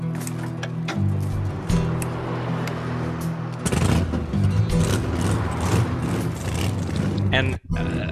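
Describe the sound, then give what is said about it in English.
A motorcycle engine idles with a steady low drone, then revs hard into loud, rough bursts with sharp popping crackles before cutting off abruptly near the end. “Hopefully, you can hear this, listener, that a motorcycle's been revved.”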